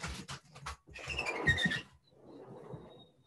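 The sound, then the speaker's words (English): A dog retches and heaves on a couch: a quick run of wet, rhythmic gagging bursts builds into a louder, strained heave with squeaky tones, then fades into softer rustling. “He's throwing up all over the couch.”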